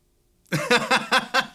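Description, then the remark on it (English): A woman imitates a chicken, clucking while moving her arms, giving a quick run of about five rhythmic, voiced clucks at fairly steady spacing, moderately loud, with no other talk. “She's clucking with her arms. Clucking.”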